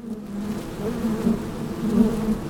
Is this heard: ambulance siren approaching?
no